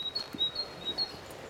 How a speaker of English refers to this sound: It's a lovely sound of a bird. Yeah. It's very peaceful.